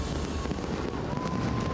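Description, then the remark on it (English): Dense, continuous rumble of New Year fireworks bursting at the Sheikh Zayed Festival in the United Arab Emirates, aiming to break four world records, with overlapping booms and crackles blending into a loud roar and no individual pops standing out. “Fireworks there at the Sheikh Zayed Festival, hoping to break 4 world records.”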